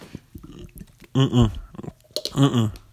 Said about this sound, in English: I'm going to take a sip of my Wawa out of my Red Robin's water bottle. 1 second, please.